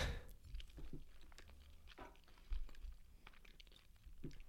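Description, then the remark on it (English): Someone eating bites of a microwaved egg scramble with tomatoes: soft, irregular chewing with small wet clicks and faint crunches, no talking, over a low steady background rumble. “Why are you taking 2 bites? I'm just taking 1.”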